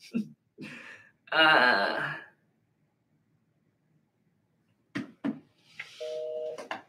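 Telephone dialing tones and a busy signal as a phone number is called: a few short electronic beeps, then a steady two-pitched phone tone near the end, with a brief voice-like burst earlier.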